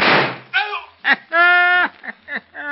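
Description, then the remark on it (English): A single sharp gunshot fired at a coyote cracks out and fades over half a second, followed by several short, pitched vocal cries in an uneven series. “I winged him all right. Yes, sir, I winged him good and proper.”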